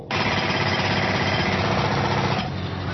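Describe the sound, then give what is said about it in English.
A pneumatic drill hammers loudly and steadily in rapid, continuous bursts, then drops off sharply near the end. No voices. “Louder than a pneumatic drill.”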